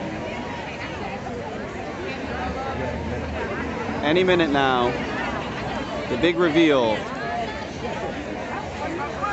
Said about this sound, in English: The crowd is big, ready to go. So, yeah, there were hundreds of people there.